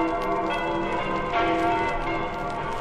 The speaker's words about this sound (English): So it's the web-slinger versus the bell-ringer. Wow, gotta get out of the way of the sound waves of those bells. And faster, I'm a dead duck. Too late, Spider-Man. The bell's toll for you.